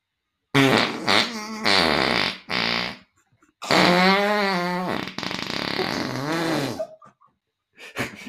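A long series of loud, buzzy farts with wobbling pitch, broken by short pauses, the sputtering bursts varying from low rumbles to higher squeaky tones, with no talking.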